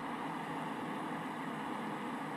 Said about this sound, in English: The one that I know is like fan white noise.